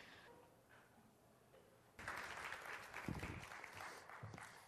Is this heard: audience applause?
yes